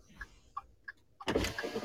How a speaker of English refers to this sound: Turn off your turn signal, dude. You already made your turn. I didn't make my turn yet. I'm waiting. I got fucking traffic. I got oncoming traffic, sir.